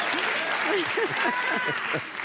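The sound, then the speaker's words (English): An audience applauds in a dense, steady wash of clapping that holds at an even loudness, with a few voices calling out underneath before it starts to thin at the end. “And also, before we forget about that applause, you know, it was only a year ago that you were fighting just to be the Speaker of the House.”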